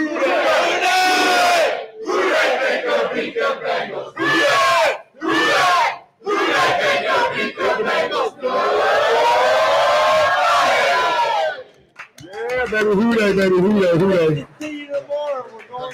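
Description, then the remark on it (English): A crowd yells the Who Day football chant together as loud as it can after a count of three, in loud, ragged bursts, pausing briefly between shouted lines before a final drawn-out roar and scattered whoops. “But, hey, real quick, we cannot end a Talking Football with Bengal Jim and Friends segment without saying the Who Day chant.”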